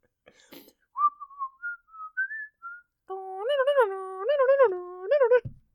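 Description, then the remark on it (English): Someone whistles a short, bouncy jingle melody as an attempt at the Chef Boyardee commercial whistle: a thin wavering line of notes first, then fuller, louder trilling phrases with brief pauses between them. “I know what you're talking about, but I whistled something very different.”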